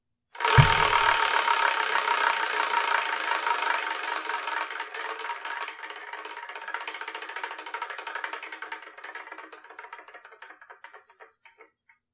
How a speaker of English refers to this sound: So we're going to use it to spin the wheel.